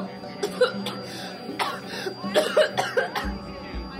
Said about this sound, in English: The woman's complaint fell short underneath a bloody cough.